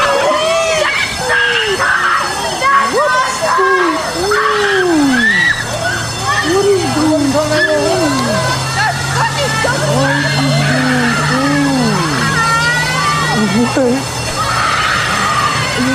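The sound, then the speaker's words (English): A little girl screams and wails nearly nonstop about her car, her shrill cries rising and falling in loud bursts, with a low steady drone humming beneath through the middle. “Well, that little girl is screaming bloody murder about her car.”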